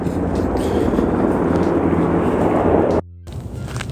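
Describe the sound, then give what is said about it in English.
A loud, steady rotor roar with a low thumping pulse of a helicopter passing overhead while searching for someone, drowning out everything else before cutting off abruptly near the end. “And this helicopter better hurry up and find this nigga.”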